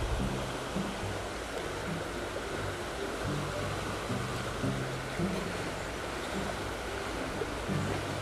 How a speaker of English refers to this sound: Now I'm going to set the phone down. We're just going to listen to the river.